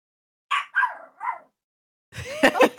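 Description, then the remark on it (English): A dog named Stella, a guard dog, gives three short, sharp barks, then after a brief pause breaks into a louder, rapid flurry of rough barking that continues to the end. “She's a good guard dog.”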